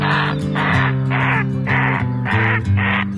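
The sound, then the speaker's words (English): A great blue heron (Ardea herodias) gives six harsh, croaking squawks in a steady rhythm, about two per second, loud, over a low sustained musical backing. “Lifting off, leaving her shores, it's Ardea herodias, the great blue heron, today's Talkin' Birds featured feathered friend.”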